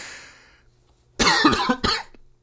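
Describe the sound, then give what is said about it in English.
Two harsh coughs in quick succession: a longer rasping one followed by a shorter burst, after a moment of near silence. “There's going to be some coughing.”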